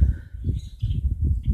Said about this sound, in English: Hopefully you can hear the birds.